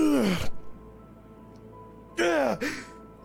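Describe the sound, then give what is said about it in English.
A person acts out the ragged, gasping breaths of the tabletop role-playing character Chippy, revived by a Lay on Hands heal: one strained rasping gasp, a pause, then two more quick heaving gasps in a row, loud and voiced. “Chippy, you take a breath.”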